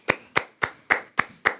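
Six crisp hand claps in a steady, even rhythm, fairly loud, sounding like one person clapping alone with no voices.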